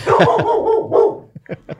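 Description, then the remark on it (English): A pet dog barks in a rapid, loud run of barks, then lets out a few shorter, quieter yips as it trails off. No one speaks. “Not even my dog liked that joke.”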